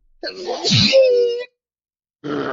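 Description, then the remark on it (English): A person vocally imitates a donkey sneezing: a noisy, explosive burst that stretches into a drawn-out, braying wail, loud. After a brief pause, another voice sound begins. “That's the donkey sneezing.”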